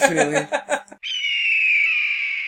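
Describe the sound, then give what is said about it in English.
A hawk screech sound effect: a short burst of harsh, voice-like squawking gives way to a long, shrill screech that holds steady for over a second, loud, then slowly trails off. “It's a hawk going like, ah! Yeah, like a hawk screech.”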